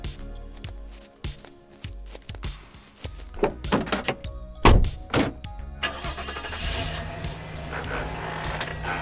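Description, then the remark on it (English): A few heavy car-door thunks land in quick succession, then an engine turns over and settles into a steady, rumbling idle that carries through to the end. “You have a car. Yeah, it's over there. Good. Give me the keys.”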